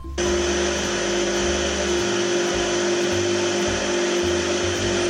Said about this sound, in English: One of those machines that either polishes or cleans a floor. No. What? It sounded exactly like that, but it was a microwave.